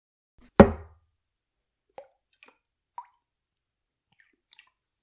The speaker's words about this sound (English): Okay, next is a splash of grenadine.